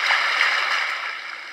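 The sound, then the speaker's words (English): A steady, hissing wash of ocean waves from a white noise app, broad and continuous with a faint surging swell, fairly loud and with no voices over it. “Very nice ocean sounds.”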